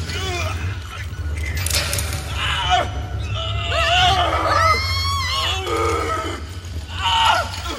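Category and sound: sound effect, man screaming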